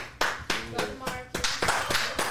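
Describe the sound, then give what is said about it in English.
A few people clap their hands in a quick, uneven burst of sharp slaps lasting a couple of seconds, with some voices murmuring or cheering underneath. “Clap it up”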